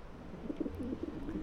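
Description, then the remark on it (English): Pigeons coo, a few soft, throaty warbling coos rising and falling in quick succession over a low background hum, with no one speaking. “This is the platform and these are my pigeons.”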